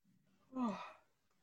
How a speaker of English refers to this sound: Excuse me. Been a while. Sorry, there I go yawning.